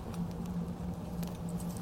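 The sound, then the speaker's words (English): Old Finnish markka coins, dated 1927 to 1940, jingle and clink as they're handled, a scattering of light, irregular metallic taps over a steady low hum, with no one talking. “Anything helpful in there? Some coins.”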